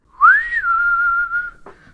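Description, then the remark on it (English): A person whistles a lonesome Wild West ghost town style tune: one clear note swoops upward, then holds long and steady before a brief dip at the end. It is fairly loud, with no talking. “oh, I was just like in a Wild West ghost town. Like I'm not gonna do the whistle, but you insert whistle in your head here.”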